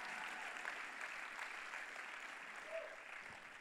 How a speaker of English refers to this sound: They gave away $1 billion as a church in 40 years. You ought to clap louder than that.